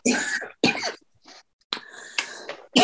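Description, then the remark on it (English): A series of harsh coughs in quick bursts, two sharp ones at the start, a softer gap, then a rougher run of hacking coughs and one more abrupt cough at the end. “Sorry, I've got a cough.”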